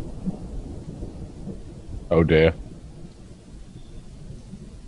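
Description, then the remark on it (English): Steady rumbling thunder and rain fill the background at a constant level, with no sharp crack, while a voice briefly exclaims partway through. “And then all of a sudden, there was an electric flash of lightning and a simultaneous roar of thunder.”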